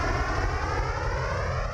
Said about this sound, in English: Let's get on the plane. Yes, it's wheels up. We're going to France.